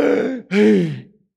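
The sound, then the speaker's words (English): A voice imitates the rattling, gurgling death-rattle breathing of a young girl trapped in a crashed car, in two rough, throaty bursts, the second longer and falling in pitch, fairly loud, with no words spoken. “I've been with people that are dying and it was that kind of rattle that was going on.”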